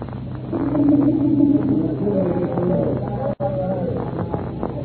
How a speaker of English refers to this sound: there's certainly a lot going on down here. I guess the business of loading and unloading cargo never stops